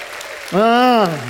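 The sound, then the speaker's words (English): A crowd at Jewel City Church claps steadily in praise during a morning service while one loud, sustained voiced cheer rises over the noise for about a second, then fades back into the applause. “Give him a hand clap and a shout of praise this morning.”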